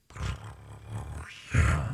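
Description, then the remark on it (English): A woman imitates a big cat with a low, rumbling growl-roar in two throaty surges, briefly dipping quiet between them before a louder, gravelly second burst; no words are spoken. “Give us a cat sound. Can I purr?”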